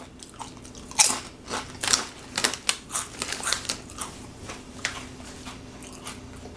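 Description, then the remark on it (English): Crunching as someone bites into a spicy kettle chip and chews it, with a loud first bite followed by a quick, irregular series of sharp crackly chews, no talking. “So I'm definitely getting a crunchy, oily taste, as you might expect.”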